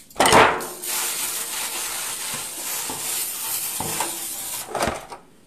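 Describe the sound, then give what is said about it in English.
A pan clatters, then cooking oil is sprayed into a 9x13 pan so a kugel won't stick, a steady, airy hiss for about four seconds, ending with another light metallic clank. No one speaks. “I'm going to spray my pan with some oil so that the kugel doesn't stick to the bottom of my pan.”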